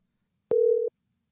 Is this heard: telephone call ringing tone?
yes